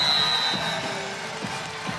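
A basketball crowd cheers after Sammy Puisis scores on a pick and roll for a career-high 28 points and Tulane calls timeout, in a steady, dense roar that holds for two seconds, with a thin high tone early on and a few soft, low thuds underneath.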